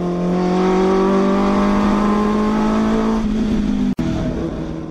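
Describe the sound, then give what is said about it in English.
A powerful V12 car engine drones steadily with a throaty exhaust note, its pitch holding high before dipping slightly, loud with no talking, a brief cut near the end. “I think that a lot of the newer electrical cars, they have the option where you can actually pump in the sound of an engine and the sound of like exhaust, a V12, because they, you know, it's really lacking from some of the new experiences out there.”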